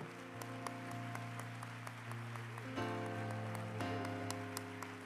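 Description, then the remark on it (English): A crowd claps steadily in a dense, continuous wash of applause after a prayer, with sustained chords of music ringing underneath and swelling slightly louder partway through. “And if you believe the Lord just heard you, I want you to clap your hands as loud as you have all night.”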